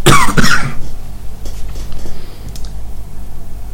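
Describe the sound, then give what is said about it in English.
A loud cough, a quick double burst at the start, then quiet room tone with a few faint clicks. No one speaks. “Now, I need to cough.”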